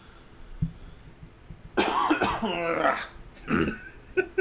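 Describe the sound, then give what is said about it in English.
Someone loudly clears their throat: a long, rough, gravelly rasp followed by a couple of shorter harsh hacks, with no talking. “Hold up, I gotta clear my throat.”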